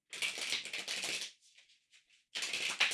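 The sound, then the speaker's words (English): Crackle of tarot cards being shuffled: a dense, papery rustle for over a second, a brief softer patter of taps, then another burst of shuffling. No one speaks. “to shuffle the cards, and everybody just connect to the cards by hearing them being shuffled.”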